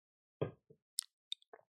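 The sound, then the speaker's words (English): Beer bubbling in a glass: a handful of small, wet pops and plops at irregular intervals, quiet, with no one speaking. “My beer's bubbling.”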